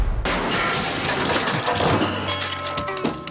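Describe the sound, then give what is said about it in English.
A house cannon is fired to destroy a robust wooden clock: a sudden loud blast bursts in with heavy low rumble, then a noisy, ringing clatter of metal and debris carries on for a few seconds. No one speaks. “Use the house cannon”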